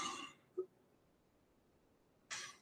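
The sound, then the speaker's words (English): A person clears their throat twice, each a short, raspy burst, with a faint click and a couple of seconds of near silence between them. No one speaks. “Sorry, I just had to clear my throat there and I have to do it again.”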